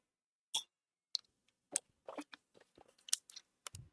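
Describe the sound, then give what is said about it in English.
Quiet sips of water: a scattered series of small wet clicks and lip smacks, then a soft low gulp at the end, with no talking. “I'm drinking a little sip of water.”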